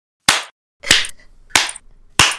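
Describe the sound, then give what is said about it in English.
Loud, crisp hand claps in a clapping beat: four sharp smacks spaced evenly about two-thirds of a second apart, with quiet gaps between and no talking. “Don't put that double clap in there, though”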